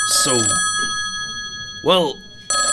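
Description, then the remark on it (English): A telephone rings at the Soggy Doggy Coffee Shop with a steady, sustained electronic tone through the whole moment, while brief bursts of voice-like sound rise over it near the start and again toward the end. “Let me answer the phone here real quick.”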